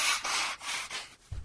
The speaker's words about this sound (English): I've got to blow my nose